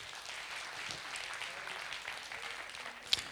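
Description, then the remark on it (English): An audience claps steadily for a few seconds, a dense wash of many hands, with one sharper clap standing out near the end. “Hey, let's give them one more clap.”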